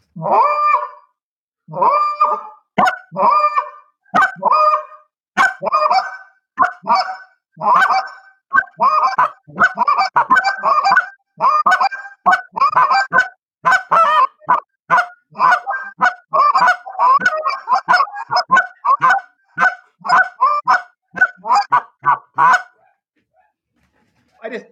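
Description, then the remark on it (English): Goose calls blown by two men in a loud, busy sequence of short clucks and drawn-out moans, overlapping and rapid for over twenty seconds, imitating a flock of geese, with no talking. “…, pick your call up and just start moaning”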